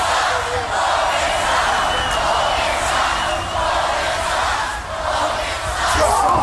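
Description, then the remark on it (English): A wrestling crowd cheers loudly and continuously as Leno leads the cheers from the ring apron, a dense, sustained roar of many voices with slight swells and dips but no break over the whole stretch. “Leno leads the cheers from the ring apron.”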